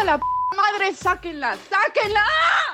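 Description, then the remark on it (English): A single short electronic phone message notification beep, a steady clear tone lasting a fraction of a second, sounds near the start, followed by overlapping voices talking. Messages arrive after Argentina's historic 2-1 loss, from Argentine friends living abroad. “After a historic 2-1 loss for Argentina, my phone blew up.”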